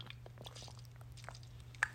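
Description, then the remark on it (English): Quiet mouth sounds of someone sipping water: small wet clicks and slurps scattered over a steady low hum, with one sharper click near the end and no talking. “Let me get a sip of water.”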